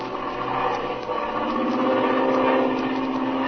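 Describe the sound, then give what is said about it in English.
A steady, continuous engine drone with a harmonic hum holds at a constant level throughout, sounding like a propeller airplane cruising in flight over a mesa, loud, with no voices. “And now, we find them cruising over the mesa.”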